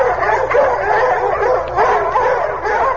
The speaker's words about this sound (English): The wolf pack. They waited for me to return, and now they're closing for the kill.